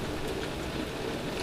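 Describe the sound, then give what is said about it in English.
Heavy rain from a storm pours steadily in a dense, continuous hiss with no breaks, fairly loud, heard through an open window. No one speaks. “I think there's a storm coming down behind me. I was going to say, it sounds like it's pissing rain on you.”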